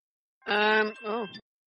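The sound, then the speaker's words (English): A voice imitates a two-note alarm chime: a steady, buzzy tone held for about half a second, then a lower, wavering second note, with no other sound around it. “That was an alarm.”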